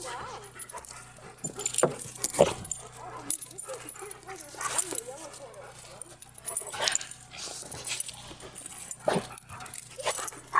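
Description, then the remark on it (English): A dog whimpers and lets out repeated short barks and yips, fairly loud, in uneven bursts across the whole stretch, out on a frozen lake where people are ice fishing and other dogs are around, with a person's voice in the background now and then. “Want to play with the other dogs? Huh? All the dogs are here.”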